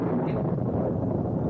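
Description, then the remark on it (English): A steady, dense roar of an electrical storm outside, heavy in the low end, with rumbling wind-like texture that holds at an even loudness without distinct claps. “The way things get dark so fast and all that crashing around out there makes you think of that verse from Joel”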